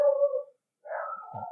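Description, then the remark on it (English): A dog named Evie lets out two drawn-out, whiny barks separated by a brief pause, clear, with no talking over them. “And right on cue, who's that barking in the background?”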